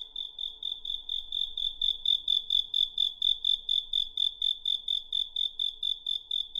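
Steady, fast chirping of crickets in Beijing in rapid regular pulses, loud, continuing without a break and with no voices present.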